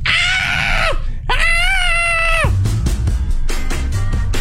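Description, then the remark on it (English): A parrot lets out two long, piercing shrieks that sound like a woman screaming, loud, followed by a rapid string of harsh, raspy squawks. “Freddy, I guess, was the one screaming, and that's apparently what was making the sound of a woman screaming.”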